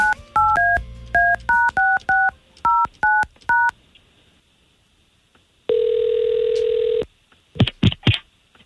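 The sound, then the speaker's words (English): A rapid sequence of about ten touch-tone dialing beeps as a woman's phone number is dialed to call her, each a short dual-pitched tone, followed by a pause, then a sustained ringback tone and a few brief clicks and noises. “We got her phone number from you already, so let's go ahead and give her a call.”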